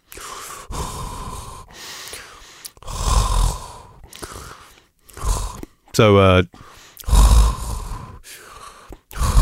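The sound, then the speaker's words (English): Loud, heavy breathing right up against the microphone, with repeated rough inhales and exhales, some wheezy and voiced, coming in uneven bursts with brief pauses between them. “sorry, you're a little closer to the mic there. It's just picking up your breathing.”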